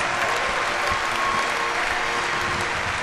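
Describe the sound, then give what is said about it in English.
Sustained applause from a large audience for state champions from Bellmont inducted into a Hall of Fame, a dense, steady wash of clapping hands at an even loudness, with no voices standing out. “Please stand and give these champions one more round of applause.”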